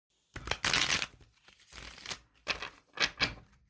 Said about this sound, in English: I think I could use a hand here to shuffle these cards. Could you do the honors, please?